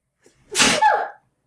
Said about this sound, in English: can't win because she's ruining the podcast with a sneeze. I wasn't ruining anything.